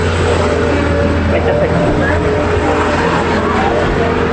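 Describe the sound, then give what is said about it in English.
A loud vehicle in traffic, one needing a suspension job, rumbles past, a steady low droning roar with a rattly, clattering edge that fills the whole few seconds without letting up. “It's very nice, but now we've got all the traffic. That guy needs a suspension job.”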